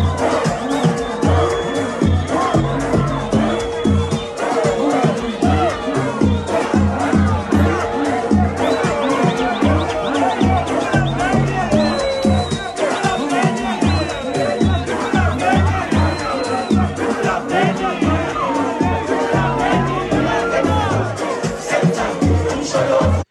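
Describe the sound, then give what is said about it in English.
A concert crowd chants and cheers continuously while a female DJ mixes and dances, a dense, loud roar of many voices with some sustained tones running through it for the whole stretch. “She's mixing and she's dancing and the crowd is chanting.”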